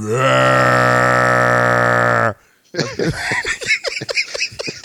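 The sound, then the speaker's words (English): A voice imitates a whale call with one long, loud, steady low moan lasting about two seconds, followed by a brief pause and then people talking. “that's how whales sound.”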